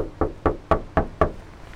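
Five firm knocks on the front door of a house in a quick, even rhythm, fairly loud, followed by a moment of quiet with no voices; no one answers.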